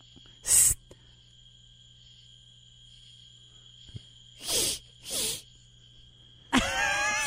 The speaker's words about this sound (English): That little shaking thing, like that. Huh. That's the katydid. That's the katydid. But that other stuff, I don't know, just crickets and whatnot.